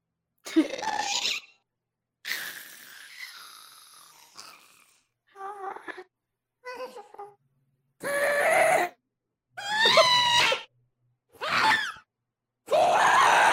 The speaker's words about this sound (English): But apparently, the sounds of the Ghast were recorded from … pet cat, which I have some noises to play for you now. Oh, amazing. I was hoping. They might sound a bit weird, but then the Ghast sounds weird.